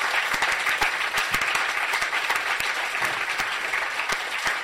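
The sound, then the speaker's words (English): An audience at an evening philosophy event applauds the philosophers who spoke, many hands clapping in a dense, even wash of sharp claps that holds at a constant loudness throughout, with no voices standing out. “And let's have another big round of applause while you're clapping for all the other philosophers you've seen this evening.”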